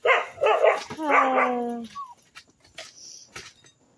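Several dog barks and yips in quick succession from the speaker's dogs, one drawn out into a long whine, then a few scattered softer sounds and clicks as the dogs settle down.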